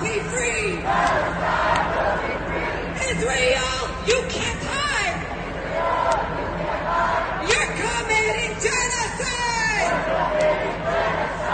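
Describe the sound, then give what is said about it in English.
A large protest crowd in the streets chants and shouts in unison, voices rising and falling in a steady rhythmic cadence, with scattered yells and cries layered over a constant dense roar of many people. “And we've heard those chants all over the country this past weekend in Washington, D.C., thousands in the streets, but also throughout our tri-state area and especially in the city of New York.”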